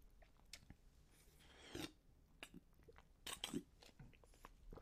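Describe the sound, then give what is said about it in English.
Mouth sounds of someone sipping a drink: soft wet slurps and a couple of swallows with small clicks and breaths, quiet and intimate, with no talking. “My apologies, I had to take a sip of that there.”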